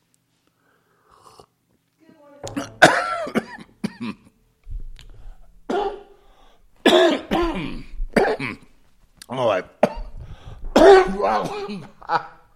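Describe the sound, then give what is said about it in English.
A person coughs and clears their throat repeatedly, a string of harsh, raspy bursts separated by short pauses, with a brief spoken exclamation near the start. “I'm going to get beyond these coughs.”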